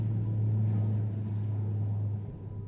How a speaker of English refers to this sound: It's an hour after sunrise, that is, about 6:15, on Tuesday the 22nd of January 1946, and an Australian National Airways DC-3 is lifting off from Brisbane's Archerfield Aerodrome.